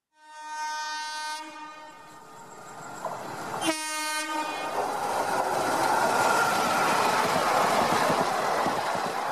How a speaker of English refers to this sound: The Indian Railways is the largest rail network in Asia. Every day, 12,617 trains run along the length and breadth of the country, covering 7,172 stations.